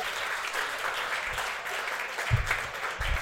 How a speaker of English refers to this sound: Dave Namery, clap it up, ladies and gentlemen.